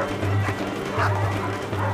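Dogs bark in a rough, repeated run of low yelps, mixed with whining and whimpering that carries on steadily underneath for a couple of seconds.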